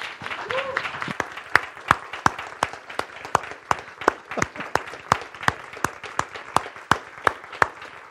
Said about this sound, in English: Well, I ask by your applause that you would welcome these two men into the eldership.